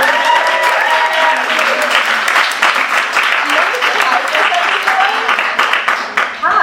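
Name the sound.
audience applause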